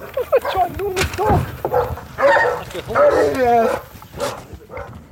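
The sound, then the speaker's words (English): A large Great Dane dog named Stuart, on a dairy farm, barks and vocalizes: a run of deep woofs mixed with drawn-out whining, yowling sounds over several seconds, with a few sharp bursts standing out. “meet him and his big dog, Stuart, a Great Dane.”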